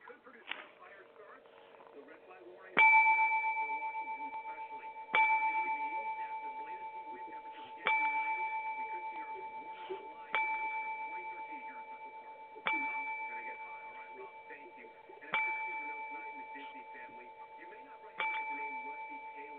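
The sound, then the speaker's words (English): A bell tolls slowly and steadily as a ten-bell salute during a moment of silence, seven clear strikes spaced a few seconds apart, each ringing out and fading before the next. A faint murmur sits underneath. “We pause for a moment of silence. Yes. And the bell of 10.”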